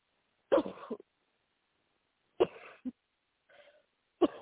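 Several harsh coughs with throat clearing from a woman during a deliverance prayer, coming in separate bursts with short silent gaps between them. They are moderately loud, and nobody talks over them.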